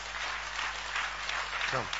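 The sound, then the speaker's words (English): A church audience claps steadily and continuously for people coming forward to be prayed for, a dense wash of many hands at moderate volume, with a brief voice rising through it near the end. “Clap for them as they come.”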